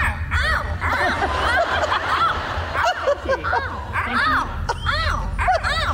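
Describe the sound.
Several children in a car repeatedly cry out short, sliding "ow" sounds in overlapping bursts, imitating a noise someone makes when unsure about something, mixed with giggles, over a steady low rumble of the moving car.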